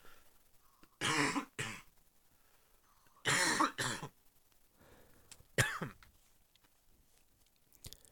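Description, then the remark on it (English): Loud coughing in two harsh bursts, each a pair of rough, throaty hacks, separated by a short pause, followed by a softer throat-clearing sound and quiet breathing. “I'm going to take a moment here to cough really loud, and then we'll have to edit this out.”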